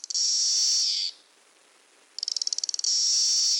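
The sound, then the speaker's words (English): A Cassini periodical cicada gives a loud, high buzz for about a second, falls silent, then makes a quick run of rapid clicks that swells into another sustained buzz. “Now, Magicicada castanei, this has a series of buzz and clicks.”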